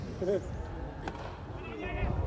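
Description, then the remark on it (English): A single sharp crack of a cricket bat striking the ball during a cricket match rings out once, clear, over a steady background of murmuring voices and people talking. “That's a great shot.”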